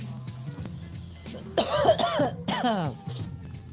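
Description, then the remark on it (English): Two harsh coughs in quick succession, the second raspier and trailing into a voiced, throaty rasp, over a low steady hum with no talking. “After that cough, that might be, though.”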